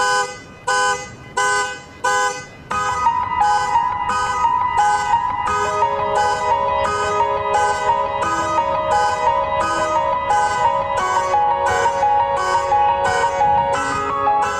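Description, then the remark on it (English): Keyboard player Tony Ann's imitation of a car alarm played on a keyboard: a few short, honking blasts in a car-alarm pattern, then a steady keyboard chord settles underneath while the pulsing alarm-like notes keep repeating loudly and evenly to the end. “Yeah, so I guess there was a car alarm honking or something like that.”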